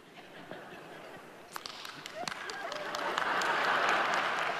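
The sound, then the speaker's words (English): Applause from an audience starts with a few scattered, sharp claps, then spreads and swells into steady, dense clapping that grows louder toward the end. “The guy that started clapping doesn't have any hair.”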